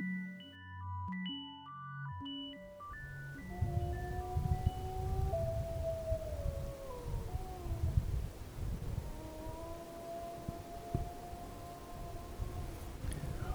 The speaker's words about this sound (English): What you can hear there are, it's a pack of husky dogs howling in the inky late evening darkness. I've just landed in Ivalo, which is about as far north as you can fly to in Finland